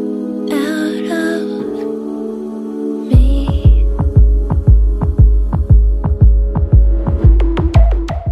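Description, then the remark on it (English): A sustained, humming synth drone opens the music, then a deep heartbeat-like drum thumps in at a steady, quick pulse and keeps pounding loudly beneath the droning tones to the end. “The other thing I've got on there is a heartbeat kind of drum that comes in after she intro, which says, I feel her heart beating in me.”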